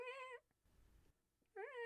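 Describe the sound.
A voice imitates the creaking, squeaking of a neighbor's turning air-intake fan with two high, wavering squeals, one at the start and one at the end, separated by a brief low rumble.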